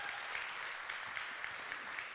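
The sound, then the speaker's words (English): A church audience at the Bridge Church claps steadily as a hand clap of praise over a prayer for 50 people to come to know Jesus on Easter weekend, a dense, bright patter of many hands that holds at an even level, with no voices standing out. “Can we get an amen, a hallelujah, a hand clap of praise over that one?”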